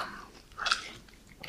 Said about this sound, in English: That was a lot of talking now, and I didn't chew my gum so much. I realized that just now.